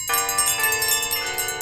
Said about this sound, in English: It swung so softly in the outset that it scarcely made a sound. But soon it rang out loudly, and so did every bell in the house.